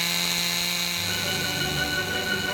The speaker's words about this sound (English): And here's a bowling pin and a chainsaw. Let me start it up here.